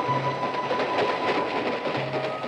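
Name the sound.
train clattering along rails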